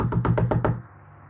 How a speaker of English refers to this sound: I'm currently stationed right outside our room at the Extended Stay America. We're doing one of these like fun little games. And I've knocked on the door.